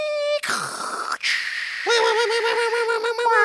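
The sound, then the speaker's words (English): Voices mimic an AOL-era dial-up internet modem connecting: a steady electronic tone, a burst of hissy static, then warbling, wavering high-pitched screeches that carry on loudly to the end. “You hear these idiots right here sitting here trying to fucking imitate this shit?”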